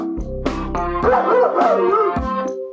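A voice imitates a dog, giving a few loud woofs that slide into a wavering, howl-like yelp before ending with a short bark.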